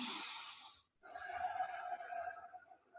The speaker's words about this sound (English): So breathing is, if I make it audible now, it's...